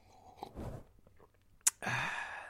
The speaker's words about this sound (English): Once more. Let's do some more coffee slurping. Yeah, that's good stuff. That's good coffee.